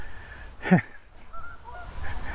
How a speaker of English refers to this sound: Oh, wow. This is a big formation of Canada geese just flew. Probably hear them.